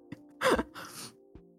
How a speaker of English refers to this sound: Oh my god, my boyfriend is really snoring right now. I'm so sorry.